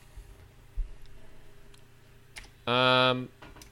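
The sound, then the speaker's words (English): Soft, scattered computer keyboard typing, done on purpose to be quiet, ticks faintly in the background, with a few irregular clicks, before a short burst of voice cuts in near the end. “I don't know what you're typing, but the fact that you're trying to do it quietly.”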